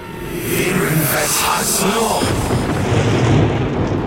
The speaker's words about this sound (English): It was only when one of the thing's tongues began to wrap around Wesley's neck that a loud crack echoed through the house, through the world.